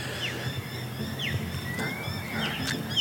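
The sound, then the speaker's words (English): Harsh, scratchy myna bird calls repeat as mynas chase a crow around, several sharp squawks scattered over a steady outdoor background hum with low rumble. “The minor bird's not very happy with that crow. Whatever it's doing, they're chasing it around.”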